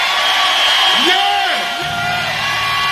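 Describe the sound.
A crowd applauds and cheers in a loud, steady wash of clapping, with whoops and bellowing voices rising and falling through it for about three seconds.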